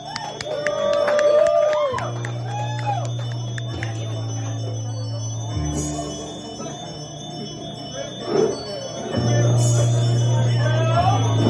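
A crowd cheers and shouts in a loud, sustained wave, layered over a steady low musical tone with brief bell-like tinkles and excited vocal whoops throughout.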